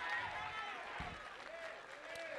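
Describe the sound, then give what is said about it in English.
A church audience claps their hands in praise to God in a dense, sustained wash of applause, with raised voices and shouts mixed in over the steady clapping throughout. “Somebody clap your hands and give God praise for memory.”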